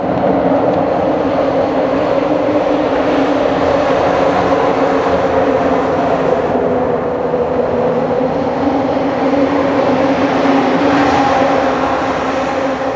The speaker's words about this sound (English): Calm when it's just the water, and chaotic when the cars pass by the bridge.